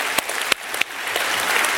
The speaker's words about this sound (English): Thanks, everyone. I think you all know who, you can clap for him.